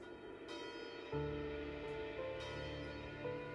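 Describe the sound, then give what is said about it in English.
Moscow church bells ring in the new year in a steady series of strikes, each rich tone lingering and overlapping the next, a full, resonant peal with no voices. “Vitali returned to their flat and boxed up her belongings as the Moscow church bells rang in the new year.”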